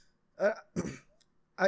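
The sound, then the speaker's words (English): Three short bursts of coughing and throat clearing, the middle one rougher and longer, separated by brief pauses with no talking around them. “I'm trying not to like cough so much, but it's not helping.”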